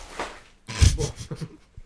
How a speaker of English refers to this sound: Dog just face planted in a box of chips. The dog's really smashing about this episode.